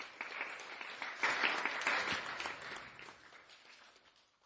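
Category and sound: crowd, round of applause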